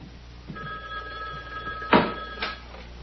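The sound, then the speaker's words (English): A black telephone on a little table by the red chair rings in one steady, sustained burst lasting about two seconds at moderate volume, as a call from Pete Martell at the mill is transferred, followed by a couple of sharp clattering clicks. No one speaks. “I'm going to transfer to the phone on the table by the red chair.”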